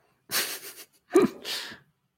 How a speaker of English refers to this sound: Everyone, my dog's just walked into the building, so if you hear panting, that's what's going on.